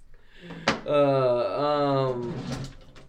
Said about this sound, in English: What are you doing looking through my drawer now? All right, well, looking for evidence that you were also bisexual.